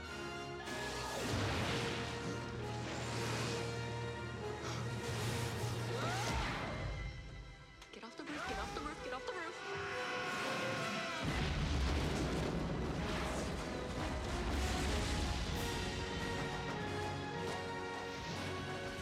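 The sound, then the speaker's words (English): Fireworks rockets explode in a loud, continuous barrage of booms and crackling bursts during a fireworks scene in a Disney animated film in which the villain dies, with a brief lull midway before the blasts resume, layered over a dense, sustained background of tones. “how he was going to die, we weren't quite sure until we came up with this whole firework thing.”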